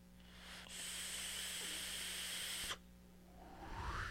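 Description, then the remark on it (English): A steady, airy hiss runs for about two seconds as air is drawn through a vape, its coil hissing, then cuts off sharply, followed by a faint rising whoosh, with no talking. “That is damn good airflow. Damn good airflow. Pretty damn good flavor. No crackle.”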